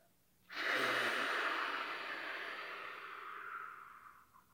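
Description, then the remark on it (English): A long, slow exhale blown out through the mouth in a breathing exercise, imitating water running out of a faucet: a steady breathy hiss that starts abruptly, holds for about four seconds, and gradually tapers off. No talking. “And then we breathe out and let the water come out like this.”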